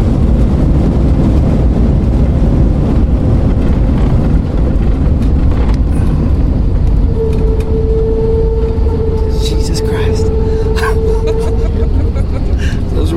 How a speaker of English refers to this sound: Balance her out. A little wobbly. Oh, God. Reverse thrusters engaged.